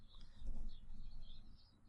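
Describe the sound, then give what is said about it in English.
Faint birdsong with soft high chirps and warbles drifting in over a low ambient rumble, birds singing outside a window. No one speaks. “The sound of birds singing outside your window is pretty good in this segment now.”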